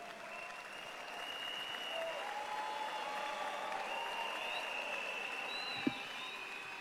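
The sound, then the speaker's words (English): An audience at a church service applauds steadily for several seconds as they welcome their pastor to preach, a dense, even wash of clapping with a faint murmur of voices underneath and one sharp knock near the end. “Let's put our hands together for Jesus with the joy of the Lord as we welcome our pastor for the word.”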